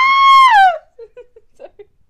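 A loud, high-pitched scream holds steady for most of a second, then slides downward and breaks off, leaving a few faint, scattered sounds in near silence.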